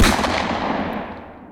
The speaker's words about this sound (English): But as we were leaving the area, we heard gunfire